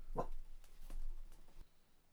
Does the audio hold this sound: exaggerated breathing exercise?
no